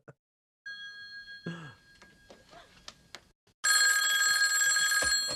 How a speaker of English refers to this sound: Now my other foot's up in the air, and then the phone rings and she just flips out of the chair.